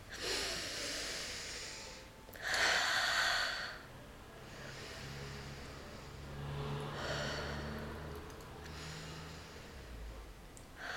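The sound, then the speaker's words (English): Slow, deep breathing as a breathing exercise: several long, airy inhales and exhales, one especially forceful whooshing breath out, with no talking. “Let's breathe it out, …. These are actually the first breaths of the year.”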